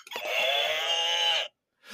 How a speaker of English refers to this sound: Oh, because her buzzer's the cow. The cow buzzer, like, yeah.